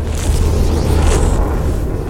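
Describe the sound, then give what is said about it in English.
A loud, deep explosion boom rolls into a sustained rumble, heavy low-end energy holding steady for a couple of seconds, with no voices present. “While my friend was coming back to get me my jacket, I heard a big explosion.”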